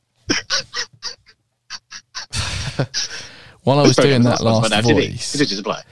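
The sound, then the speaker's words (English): A person does a loud squawking chicken impression, hands on their sides and thrusting like a chicken: a run of short clucking bursts, then a breathy rush, then a sustained, strained squawk. “I was going like, Now TV! As if I was like a big chicken.”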